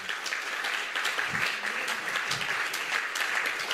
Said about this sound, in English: By the way, I love the picture that Jeff's painting. If you came in the back car park today, big round of applause for Jeff Ells. Wow.